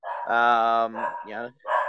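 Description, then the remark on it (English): CM Punk's dog, Larry, barks in a few drawn-out, tonal yelps, one long and two shorter, loud and clear with brief pauses between them. “It's CM Punk's dog made his debut on the pay per view as well.”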